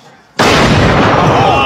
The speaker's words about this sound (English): Oh, no! That wasn't a gunshot, guys. That was somebody getting slapped in the fucking face. One and done.